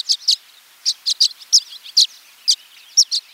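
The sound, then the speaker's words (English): Violet-green swallows gathered by the dozens on electrical wires in the western United States before migration, chattering in a run of quick, high-pitched chirps, about ten short notes in uneven pairs and singles, with soft twittering between them and no voices. “But now, they gather on electrical wires by the dozens in the western United States, chattering away as part of their pre-migration networking.”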